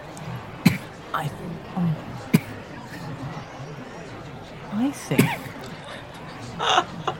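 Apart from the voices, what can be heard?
coughing fit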